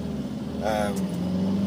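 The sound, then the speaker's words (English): Steady low rumble inside a car as the speaker drives around, a constant engine and road drone throughout, with a brief voiced sound from someone partway through. “In case you didn't know, I don't usually just record stuff as I drive around in my car ranting like a madman.”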